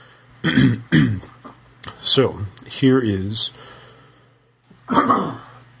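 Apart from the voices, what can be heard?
cough and throat clearing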